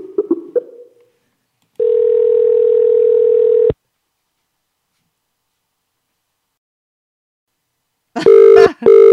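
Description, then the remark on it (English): An outgoing phone call's ringing tone: a steady, clear electronic burst of about two seconds, then a long silent gap before the next ring starts, fairly loud, with no one talking. “I did actually call her. Oh my God, I called her 2 times.”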